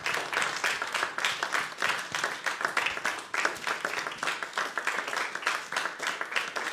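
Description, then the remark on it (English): An audience claps their hands for their pastors in steady, dense applause, many overlapping claps forming a continuous crackling wash at a fairly even loudness for several seconds. “Let's give our pastors a great big hand clap.”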